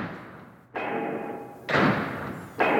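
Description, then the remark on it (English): Heavy, booming drum hits land about once a second in a loud 80s-style rock track, each big thud ringing out with a sustained tone beneath it; no one speaks. “Those drums. So bad. Doom, doom, doom.”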